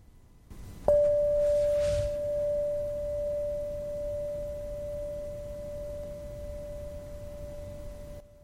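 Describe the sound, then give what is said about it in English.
A meditation bell is struck once, giving a clear, pure tone that rings on steadily and slowly fades over several seconds, alone without any talking. “The sound of the bell, and there's the purity and clarity of it.”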